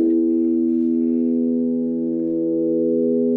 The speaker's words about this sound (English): So the piece you just saw and heard is a piece called Drone for the Mobile Phone Orchestra. We're synthesizing sound on the phones.